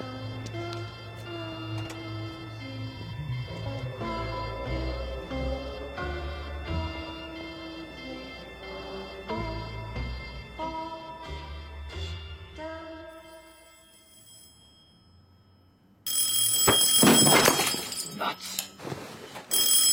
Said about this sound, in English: Phone rings and a lamp smashes. This is an unwelcome middle of the night phone call for Dave and Carol Tosca.